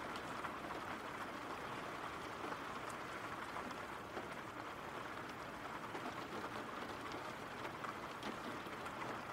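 Steady, even rain hissing across the whole stretch without letup, fairly soft, with faint scattered patters of drops and no voices.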